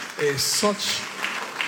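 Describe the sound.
A short burst of clapping from a church audience during a sermon, applauding a pastor, mixed with voices calling out, with a steady wash of hand claps lasting under two seconds.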